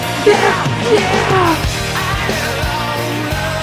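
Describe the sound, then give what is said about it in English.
A singer lets out a raw, strained scream over a loud, dense rock mix, with sharp snare hits cracking through the band as the yell fades out. “And then he screams it out right here.”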